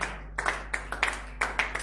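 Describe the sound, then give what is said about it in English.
Scattered, uneven clapping from an audience: a handful of sharp hand claps spread irregularly over a couple of seconds, moderately loud, with no one speaking. “And I know some people cannot clap because it's like they are not even ready to go out there and win souls.”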